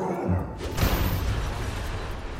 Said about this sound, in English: The skeleton kicks in the door.